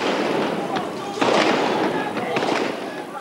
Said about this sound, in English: And then, as troop lorries were seen moving down the road, there was gunfire from those lorries.